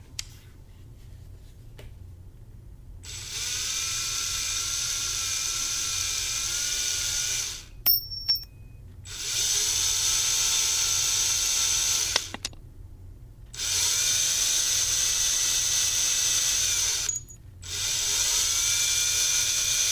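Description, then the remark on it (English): A power screwdriver whirs in four long bursts, each a steady, high-pitched motor whine lasting a few seconds, separated by short pauses, as it is used on a locked door to get in. No one speaks over it. “The door is locked, so I'm gonna use my handy dandy screwdriver and try and get in there.”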